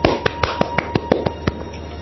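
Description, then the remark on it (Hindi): A radio host claps for this round's contest winner, one person clapping steadily, about ten sharp, bright claps at an even, fairly quick pace, with a faint steady hum underneath and no voices. “इनके लिए जोरदार तालियां। सबसे पहले मैं बजाता हूँ।”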